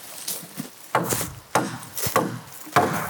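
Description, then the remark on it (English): A small hatchet chops into wood while camping, in sharp, regular strikes, about four solid thwacks roughly half a second apart, each followed by a brief splintery rustle, with no talking. “That little shrayed hatchet's not bad.”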